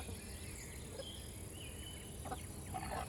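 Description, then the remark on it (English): Crickets chirp in a steady, unbroken high-pitched trill over a low background rush, with a few faint bird-like calls breaking in briefly toward the end. The crickets are by a river and make the sound by rubbing their legs together. “The river is close, and you can hear the crickets rubbing their legs together to make that noise.”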